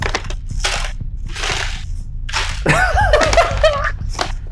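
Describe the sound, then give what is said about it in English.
Wrapping paper crinkles loudly in several bursts separated by short pauses, followed by a longer, rougher stretch of ripping and tearing with some squeaky, whistling tones mixed in. “It's the loudest wrapping paper.”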